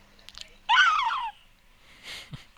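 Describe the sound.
A person lets out one loud, shrill screech lasting about half a second, mimicking a seagull's cry, followed by a quiet breathy sound.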